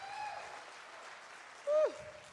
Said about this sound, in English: Y'all got to clap better. There you go.